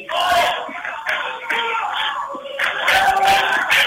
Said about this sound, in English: Good crowd here from Washington. Urging their girls on to a defensive stop.